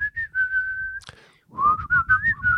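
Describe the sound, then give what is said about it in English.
A person whistles a shrill, high-pitched version of a song, holding a long steady note, pausing briefly with a short breathy click, then continuing with quicker, wavering notes. “Like it's a shrill whistle.”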